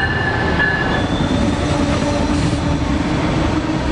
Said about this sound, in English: Amtrak's Empire Builder first served customers in 1929 as the flagship train of the Great Northern Railway. It currently operates two lines between Chicago and both Seattle and Portland, serving up to 38 stations along the way, depending on the route